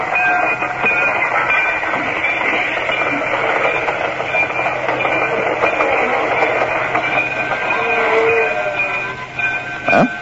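A train rolls steadily along the rails, its continuous rumble and clatter loud, with faint high metallic tones running through the noise for the whole stretch.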